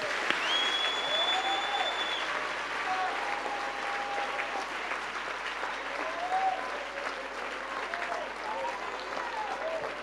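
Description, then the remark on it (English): An audience claps their hands in sustained, dense applause that fills the room, with scattered voices and faint whistles rising over the steady clatter. “Clap your hands, clap your hands, clap your hands.”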